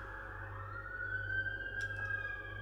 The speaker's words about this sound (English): Dublin City with the sirens. Well, should I say just city in general? I was just thinking what the hell is going on there, man. Something's always happening around these parts.